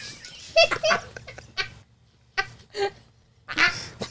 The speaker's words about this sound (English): That dog barking because of you. He's like, where's the bird?